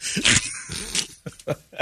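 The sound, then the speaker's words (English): A rabid dog growls and whimpers in a handful of short, strained bursts, the last few coming as quick separate yelps with brief gaps between them. “Mary Florence was bitten by a rabid dog.”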